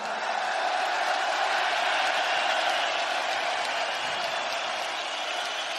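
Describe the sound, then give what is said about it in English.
A huge crowd at a fight in the O2 arena roars and cheers without pause, a dense, loud wash of voices and applause that holds steady for several seconds with no single voice standing out. “When you walked out here, the energy was unbelievable. This crowd lost their mind.”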